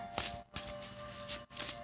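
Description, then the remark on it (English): A deck of cards is shuffled before a card is drawn, with a couple of quick riffling bursts separated by brief pauses, crisp and fairly quiet, with no talking. “So let me just draw a card to see, and then we're going to do some light language.”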